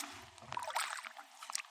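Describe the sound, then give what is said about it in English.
River water rushes and gurgles into a sterile plastic sample bag held facing upstream, a soft, bubbly splashing that swells briefly and then trickles on for under two seconds, with no one talking, as surface water is collected to sample the genetic material of wildlife in the river. “So I'm going to hold it so the bag's facing upstream and the water can just flow into it.”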